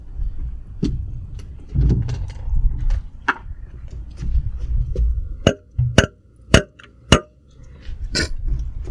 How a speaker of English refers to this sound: Beer can on glass vessel.